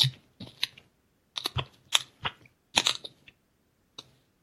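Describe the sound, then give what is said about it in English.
Loud crunchy chewing, a series of sharp crackly bites in irregular bursts with brief pauses between them, no talking. “Holy shit, Crunch Monster over there.”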